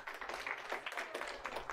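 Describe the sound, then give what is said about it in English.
A group claps together in a dense, steady patter of overlapping hand claps, a bright crackling applause that holds at an even, moderate loudness for the whole two seconds. “You see, the issue, you guys can clap and you can have a seat.”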